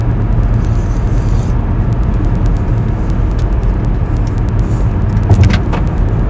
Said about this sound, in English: I need a sip of coffee while I'm heading down the highway here, pardon me.